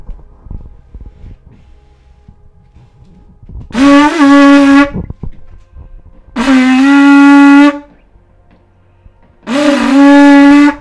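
conch shell being blown

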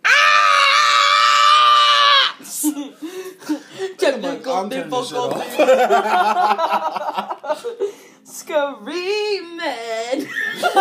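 human body sound, person screaming

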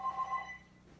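household object, telephone ringing

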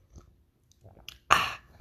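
food or drink, sipping coffee

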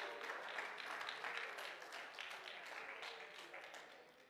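crowd, audience clapping hands

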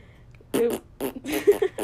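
human body sound, fart

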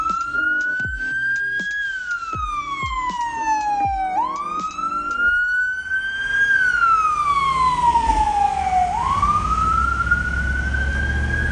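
vehicle, ambulance siren wailing

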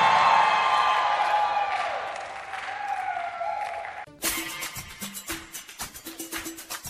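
crowd, audience screaming and cheering

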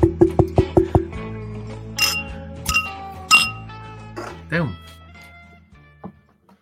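household object, glasses clinking

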